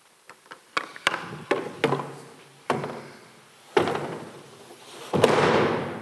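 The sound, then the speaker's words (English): A chain of dominoes topples in sequence: light clicks at first, then progressively louder, heavier clacks and thuds, ending in a big crashing impact that rings out. No one speaks. “I read that it's a, You could go 29 dominoes and you could knock over the Empire State Building.”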